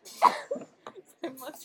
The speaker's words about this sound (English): I just choked on my water.